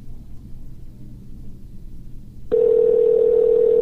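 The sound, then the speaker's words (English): A low, muffled rumble gives way to the steady electronic tone of an unanswered phone call, loud, humming on without a break until the end. Nobody speaks. “And see, I'm scared to leave a message.”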